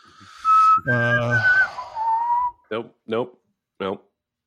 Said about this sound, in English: What, the whistling? It was too shrill in my ear. I don't know if you got too close to the mic or what, but no.